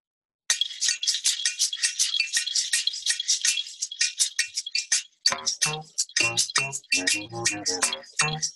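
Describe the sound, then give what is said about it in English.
Bass clarinet run through a looping effect: a rapid stream of bright, clicky, ticking pulses, then, about halfway through, lower stuttering tones join in. No one speaks. “So I've got the bass clarinet going through some weird kind of loop also.”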